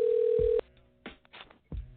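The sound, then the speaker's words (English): A single steady electronic ringing tone of an outgoing phone call to a caller on a BlogTalkRadio show plays loudly for about half a second and cuts off, followed by muffled thumps and brief bursts of noise. “Pick up the phone, bro.”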